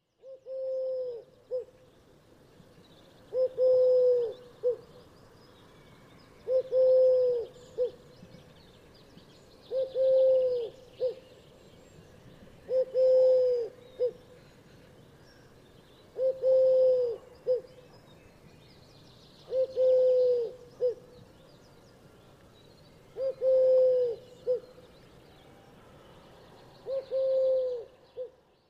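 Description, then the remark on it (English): A Eurasian collared dove (Streptopelia decaocto) coos repeatedly in a steady rhythm, roughly every three seconds, each phrase a soft, low, hollow triple note, clear over quiet background ambience. “The scientific name of the collared dove is Streptopelia decaocto, the first part which comes from the Greek streptos, which means collar, and pelia, which means dove.”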